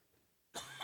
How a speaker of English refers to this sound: Sorry. I have allergies. And so if I cough violently, like that right there, into the side of the mic, I'm sorry.